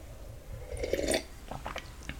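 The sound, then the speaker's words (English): A fairly quiet slurping sip of hot coffee, followed by soft wet mouth sounds and a few small clicks as it's swallowed; no one speaks. “So let me take a sip of coffee.”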